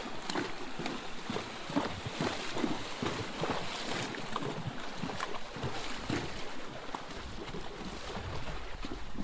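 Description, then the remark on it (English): Water splashes and churns steadily as a small spring-fed tributary, Wolf Pup, is crossed, a continuous rushing with scattered brighter splashes and some wind buffeting, and no voices. “We're about to cross a little tributary called Wolf Pup, so I'll hold up.”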